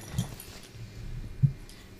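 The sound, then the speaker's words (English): A dog named Gracie laps drinking water, making faint, soft wet smacks and splashy ticks at an uneven pace over a low background hum, with no talking. “If you hear that, that's Gracie drinking water.”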